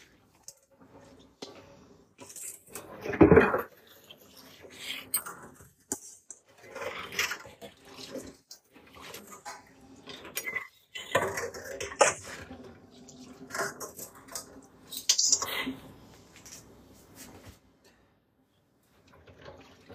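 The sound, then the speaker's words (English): Kitchen cleanup sounds: running water, scattered clinks and clatters of dishes, and cupboard bumps in irregular bursts, with a loud thump early on and a sharp clank later. “Alright, you guys, clean my kitchen with me because I just made some really good soup.”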